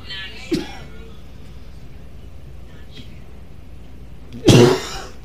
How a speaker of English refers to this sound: I had to cough on that one.